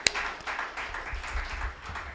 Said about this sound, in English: Huge shout out to Bitcoin Commons and Unchained, man. Let's like give him a round of applause.